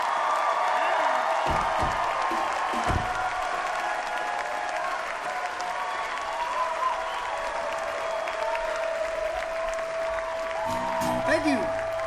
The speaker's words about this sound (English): Thank y'all for clapping with us.